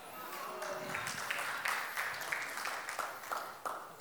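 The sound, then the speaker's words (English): Sparse clapping from two people during a church sermon, with sharp, uneven claps in a loose rhythm and a faint murmur behind them. “Got two people clapping.”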